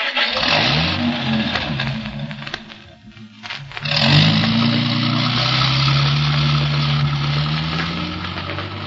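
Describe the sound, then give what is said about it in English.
A car engine cranks and catches, then revs up with a rising roar as the vehicle pulls away, staying loud with a steady mid-pitched engine drone throughout. “Drive back home and stay there.”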